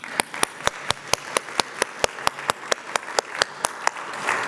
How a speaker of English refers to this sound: You know, one of the things that I love about coming in into our traditional service is listening to our beautiful choir. And I know that I might break the mood, but I do think they need a round of applause.